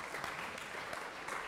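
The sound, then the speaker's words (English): A lecture audience gives a steady wash of applause for a student remembering the answer, dense and even clapping from many hands at a moderate level, with no voices standing out. “Round of applause for remembering the answer.”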